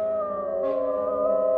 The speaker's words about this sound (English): Somewhere high overhead, probably on the tower, I heard the voice of the Count calling in his harsh, metallic whisper. His call seemed to be answered from far and wide by the howling of wolves.